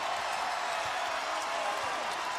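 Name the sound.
arena crowd cheering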